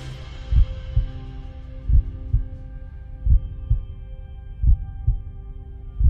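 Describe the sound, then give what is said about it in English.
A deep, thudding heartbeat pulses in lub-dub pairs, four full beats at a slow, steady pace, over a soft sustained musical drone with no voices. “This is the heartbeat of our church.”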